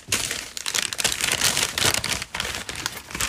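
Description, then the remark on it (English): Crinkly crackling of plastic packaging being untaped, peeled and pulled open from a coconut donut, a dense bright rustle that surges in several bursts with brief dips, no one talking. “But I got my donut here. It's coconut. So let's just untape that.”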